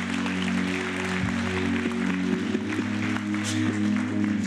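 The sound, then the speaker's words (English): A crowd applauds steadily, a dense wash of many hands clapping at once that holds at an even level throughout, with a low sustained hum underneath. “That's worth clapping for.”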